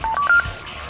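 Three quick electronic keypad beeps, each a clear steady tone stepping slightly higher in pitch, as the timer of a Manganite bomb charge is armed in a cavern, followed by a low, quiet rumbling background.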